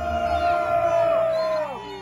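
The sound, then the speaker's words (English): Jake Angeli, known as the QAnon shaman, lets out a long, loud, steady howl in disapproval of Governor Ducey at a hotel meeting, holding one pitch for about a second and a half, then sliding downward at the end, with crowd noise murmuring underneath. “Capitol, howled in disapproval of Ducey and pumped his arms in the air.”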